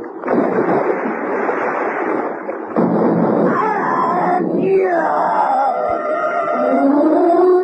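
A heavy, booming roar like an old cannon firing rolls out loudly, then gives way to rumbling noise and rising, wailing tones that fade into the background.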